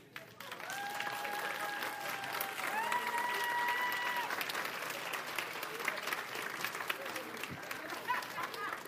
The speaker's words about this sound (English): Clap now. Now, try this. Stand up and clap.